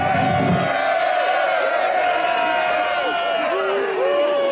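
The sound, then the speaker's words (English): A crowd cheers and whoops loudly and continuously at a blessing given to a couple's union. Many overlapping voices rise and fall in pitch, with no clear words standing out from the roar. “These fools cheer that some lout has granted permission to ravage my sister.”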